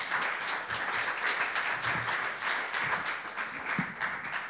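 An audience applauds steadily, a dense wash of many hands clapping at an even loudness for several seconds, with no voices over it.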